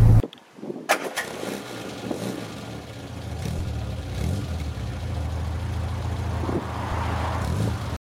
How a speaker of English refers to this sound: Say it's quiet and then a car goes past me. Typical.